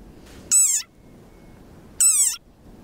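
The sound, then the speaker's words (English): Two loud, squeaky cries from an angry frog a second and a half apart, each a short harmonic squeal like a rubber dog toy, with quiet background between them. “It sounds like a dog toy. But actually, this is the sonorous war cry of a very angry frog.”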